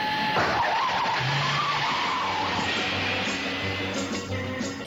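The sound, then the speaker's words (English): A car engine roars while tires skid and screech in a long, continuous squeal, loud, ending with a sudden sharp burst of noise. “To the Batmobile. Let's go. Atomic batteries to power. Turbines to speed.”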